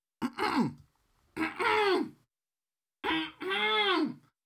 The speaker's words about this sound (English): Yes, that's how I clear my throat.